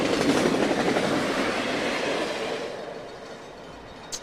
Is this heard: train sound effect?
yes